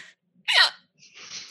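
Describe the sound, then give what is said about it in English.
A single sharp hiccup bursts out, followed by a soft breathy exhale trailing off. No one speaks. “Sorry, I got the hiccups.”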